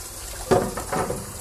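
tap water running

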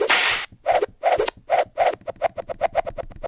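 whip cracks

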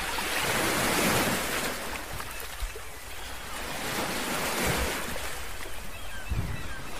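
ocean waves

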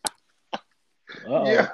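cough

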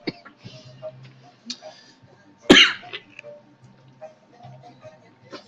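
coughing and throat clearing

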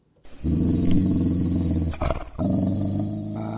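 dog growling and barking

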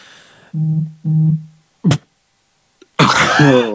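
sneeze

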